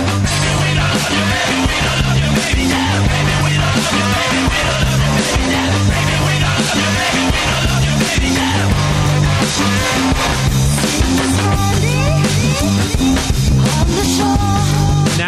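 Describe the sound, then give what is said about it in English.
A 1990s alternative rock song with female vocals plays loud and unbroken, built on a steady, repeating bass line with drums and guitars driving a consistent rhythm throughout. “I think you'll recognize this, especially when the girl starts singing.”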